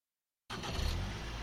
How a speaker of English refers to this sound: Right, well, it's Saturday the 29th of June. Just got in the car.